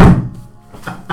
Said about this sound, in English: That was his head hitting the floor.